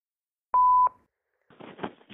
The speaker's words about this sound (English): Leave a message after the beep and I'll call you back, if I feel like it. Beep. No, this is the real one.